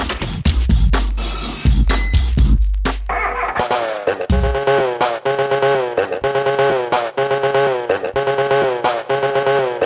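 An electronic track stitched from sound effects sampled from the films The Texas Chainsaw Massacre and The Shining: loud, choppy bursts of roaring, chainsaw-like noise open it, then give way to a steady, looping rhythmic pattern of tonal stabs, full.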